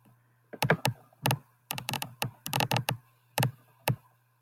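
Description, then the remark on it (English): A microphone crackles with a rapid, irregular run of sharp clicks, some in quick clusters, over a faint steady low hum, with no voices. The mic is not screwed in all the way, so it moves whenever the desk is moved. “So I think your mic is clicking.”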